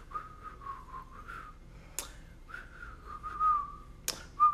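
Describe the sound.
Someone whistles a bouncy melody in short, clear phrases, broken by two sharp finger-snap-like clicks, with no talking.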